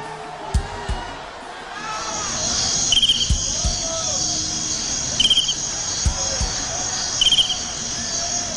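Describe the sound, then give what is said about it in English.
Steady cricket chirping fills the background, a continuous high trill with brief pulsing bursts every couple of seconds, accompanied by faint low thumps and crowd murmur. “The crickets?”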